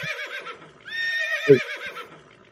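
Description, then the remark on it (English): A loud horse neigh sound effect rings out, a shrill, quavering whinny that rises and shakes for a couple of seconds before fading, heard on its own without any talking. “I should play the big horse sound just for Mick Dell, because it was a very Mick Dell game for this one.”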